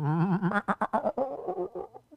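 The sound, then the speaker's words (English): Someone imitates a sheep bleating: one drawn-out, wavering "baa" that breaks into quick, shaky pulses and then trails off, lasting about two seconds. “So I should make a sheep sound.”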